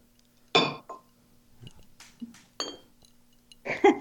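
A glass and a bottle clink together during a toast in a few sharp, ringing taps spaced unevenly over a few seconds, fairly loud, with faint rustling between them.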